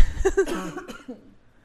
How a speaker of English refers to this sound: Sorry, I feel like I have to cough again. One second.